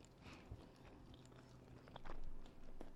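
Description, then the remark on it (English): Chewing on a tough, fibrous, woody medicine, with crunchy bites and wet mouth sounds in an uneven rhythm, louder toward the end. “God, it's like chewing on a tree shit.”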